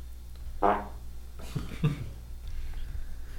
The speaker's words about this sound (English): Was that a parrot fart?